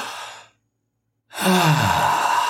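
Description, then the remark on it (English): An airy inhale, a short pause of silence, then a long, loud exhale that turns into a voiced sigh. It sounds like one deep breath in and out, with no talking. “Stop right now. Take a deep breath.”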